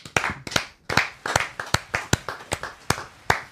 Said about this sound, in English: We got fake applause. Yeah, it's a button. We like a real show now.